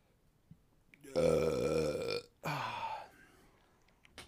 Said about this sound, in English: beer burps are a thing, and if you don't like it, get the fuck out, because I'm not editing them out.